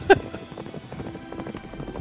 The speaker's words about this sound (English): Just brr, brr, brr. I'm gonna try to edit in some like horse hoof sounds there.